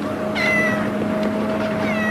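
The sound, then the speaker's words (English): A female cat on a ship meows once clearly, then again more faintly near the end, over a steady low mechanical hum like an engine droning in the background. “Yeah, but I love that the cat was there”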